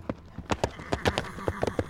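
Horse hooves clip-clop in a quick, uneven rhythm, about a dozen sharp hollow knocks in two seconds, fairly close and moderately loud, with no voices.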